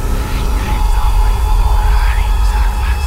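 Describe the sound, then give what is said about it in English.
A booming, monstrous roar rumbles continuously for about three seconds, deep and loud, with eerie wavering moans sweeping above the heavy low-end growl. No one speaks. “There was a moment of calm, his throat burning, before the roaring response that followed.”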